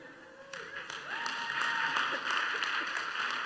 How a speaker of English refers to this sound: If you don't know why we're clapping